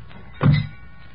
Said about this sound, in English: Okay, heave it in. Slam the doors.